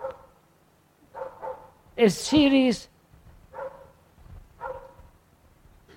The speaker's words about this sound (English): Could we ask the dog to be quiet for a while?